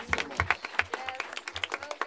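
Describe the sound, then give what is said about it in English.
A burst of audience applause, many hands clapping in a dense, irregular patter with sharp individual claps popping out, steady and moderately loud throughout. “Can we just one more round of applause?”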